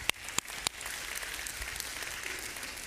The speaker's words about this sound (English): Yeah, we can clap for that, come on.